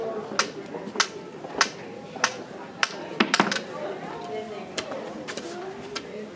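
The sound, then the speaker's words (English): Sharp cane taps strike in a steady walking rhythm, about ten in all, as a man walks with his cane from a reception desk along a hallway with sound-muffling panels toward quiet study nooks, over a murmur of voices and room noise; the later taps sound a little softer and duller. “Listen to the ambient sound deaden as he walks with his cane from the reception desk to the study rooms.”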